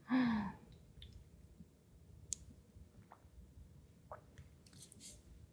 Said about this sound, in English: I'm about to take a sip of water. One moment.